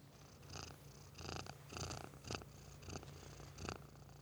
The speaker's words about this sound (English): I want to see if I can get Boo Boo to purr into the mic.